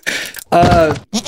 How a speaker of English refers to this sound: Pitar is currently viciously and mercilessly slaughtering goats in the green room right now. Every one of those goats that you just heard be murdered is Pitar's work.